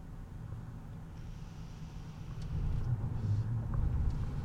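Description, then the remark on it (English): Steady low road rumble from inside a moving car, a continuous deep drone that swells a little louder partway through, with no talking over it. “I wonder if these people who drive next to me and see me are wondering, what the fuck is this guy doing?”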